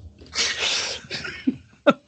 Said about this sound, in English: I got to let a fucking burp and a half go. Oh, God.